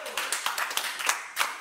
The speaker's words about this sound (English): Can you give God a hand clap of praise tonight? Hallelujah.